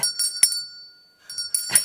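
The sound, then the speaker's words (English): A Salvation Army hand bell rings in two bursts of shaking separated by a brief lull, each bright metallic clang leaving a sustained, shimmering ring. No one speaks. “I had the Salvation Army, and this is actually Salvation Army.”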